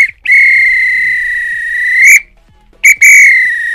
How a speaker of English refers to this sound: If this were a real bit of extra time, this is when the referee blow the whistle because it's finished.